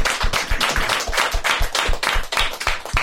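A round of applause for a guest: many hands clapping in a dense, steady, loud patter that holds without pause for about three seconds, with no voices heard over it.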